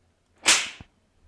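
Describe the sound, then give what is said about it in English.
A single sharp, bright slap sound effect cracks out loudly, with a brief tail and a faint secondary thump right after, standing alone without any talking. “Slap him.”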